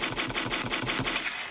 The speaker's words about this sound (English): And this is a sick transition, so I'm going to have to give myself some gunshots here.